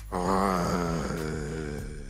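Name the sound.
person imitating a growl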